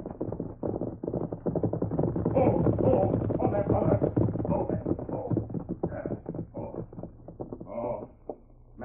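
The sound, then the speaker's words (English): A horse carrying a hurt rider gallops hard along a trail from the west, hooves drumming in a rapid, steady rhythm, loud and continuous before easing off slightly near the end. “You hear horse. Run plenty fast.”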